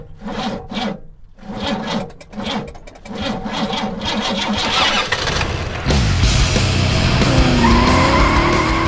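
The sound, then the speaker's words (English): An old, rickety Dodge convertible car engine cranks in a rough, rhythmic stutter for several seconds, then catches and roars to life, revving loudly. “old Dodge convertible. It's super rickety, but it was a convertible and he had a car, so why the hell not?”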